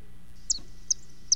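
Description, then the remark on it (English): Three short, high-pitched chirps of a Vaux's swift spaced evenly about every 0.4 seconds, sharp, over a low steady background hum with no one talking. “We have some right here in the studio, guys. So multiply that sound by 30,000”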